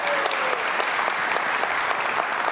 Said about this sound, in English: So let's give Mike a round of applause. He kind of snuck out.